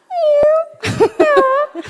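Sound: person imitating a cat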